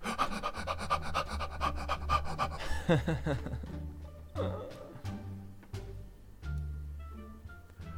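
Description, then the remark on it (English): Fluffy's voice imitates a dog panting, with rapid, rhythmic huffing breaths repeating steadily, over a background of music. “Fluffy's dog imitation was a huge hit with his feline pals.”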